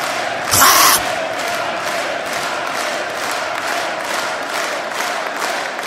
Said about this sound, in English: Give it up. Tell him how you feel. Clap for the whackness.